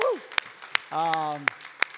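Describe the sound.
A handful of sharp, separate hand claps ring out at an uneven pace amid an audience's clapping, mixed with voices speaking and a drawn-out vocal sound between the claps.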